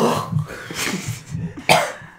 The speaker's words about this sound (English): I coughed and rice hit my front teeth and fell oh, back yeah, in my mouth.